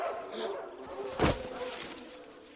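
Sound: big dogs barking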